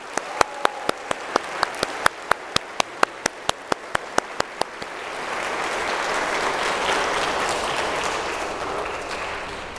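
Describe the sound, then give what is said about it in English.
Applause from a church audience congratulating a deacon begins with a few sharp, evenly spaced claps, then swells into a steady, dense wash of clapping from the crowd that holds to the end. No one speaks. “So let's give Deacon Ed now a round of applause to congratulate him.”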